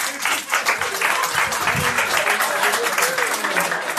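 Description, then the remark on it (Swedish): A crowd applauds steadily for about four seconds, a dense, even wash of many hands clapping at once, with a few scattered voices mixed in underneath, welcoming the evening's first comedian at a comedy show aboard a ferry. “Så en stor applåd till kvällens första komiker”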